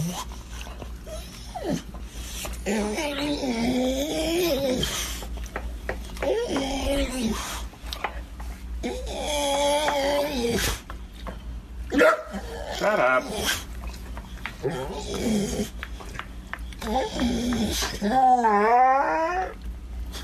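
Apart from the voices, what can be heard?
dog whimpering and growling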